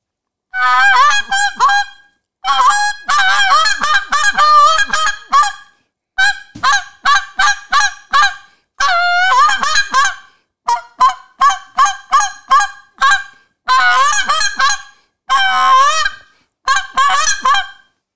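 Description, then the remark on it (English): A goose call blown in rapid runs of loud honks and clucks, imitating a goose, with brief pauses between bursts and no talking. “when did you win that goose call?”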